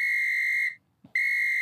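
A whistle blown in two long, loud, steady blasts, separated by a short pause, with no voices alongside.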